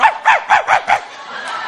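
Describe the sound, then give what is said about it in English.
A dog barks five times in quick, evenly spaced succession, loud, before the sound trails off into a quieter background with no one speaking. “And the way the police found him was through one of them dogs.”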